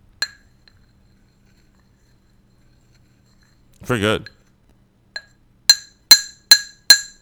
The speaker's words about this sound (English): Love Foley work. Give me a job. Exactly. That was a battery and a glass.